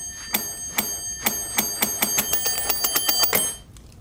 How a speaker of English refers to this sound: She's ringing the bell.